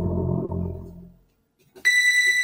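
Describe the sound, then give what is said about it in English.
A sustained ethereal synthesizer pad sample, recorded in 1981 from a woman's voice providing the root note and stretched across the keyboard, plays a low, warm, harmonically rich tone that fades away, then after a brief silence a bright, high, steady tone swells in and holds. “You know, it's, you know, it's this wonderful ethereal kind of pad sound, and it was recorded in 1981,”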